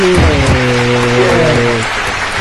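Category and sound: crowd, audience applause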